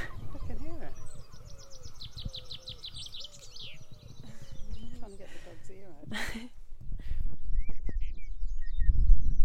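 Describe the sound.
A male blackbird perched at the top of a cliff sings a short burst of quick, repeated warbling notes, fairly clear, then trails off into scattered chirps while low voices and rumbling noise continue underneath.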